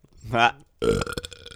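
A person burps on command: a loud, guttural burp rumbles, followed after a brief pause by a second raspy, drawn-out belch with a croaky, sputtering tail.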